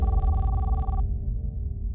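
A single electronic phone ring at about 11:30 p.m., a warbling tone lasting about a second before it cuts off, over a low, steady background rumble. No one speaks.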